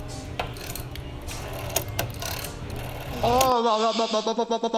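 A rotary phone dial whirs with fast, rattling mechanical clicks for several seconds, then gives way to a wavering, pulsing tone.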